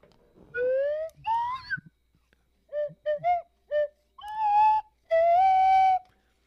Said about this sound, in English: Yeah, why don't you try the slide whistle into your microphone